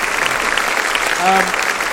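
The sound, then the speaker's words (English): Steady audience applause at a live show for guest Fern Brady, dense clapping from many hands at a fairly loud, even level, with a brief tonal note rising faintly over it partway through. “Ladies and gentlemen, please give a master of applause for Fern Brady.”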